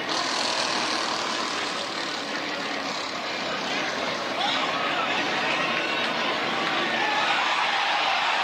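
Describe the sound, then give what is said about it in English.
A large NASCAR race crowd roars and cheers after a crash in which Bubba Wallace and Christopher Bell go into the wall, one continuous, loud wash of noise, holding steady for several seconds without individual voices standing out. “Sounds like the fans liked it.”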